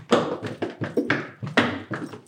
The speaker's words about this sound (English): I'll do a tap dance. Shall I mic the feet like ASMR? Ready? She can actually do it. Wow, she can do it. She can actually do it in boots.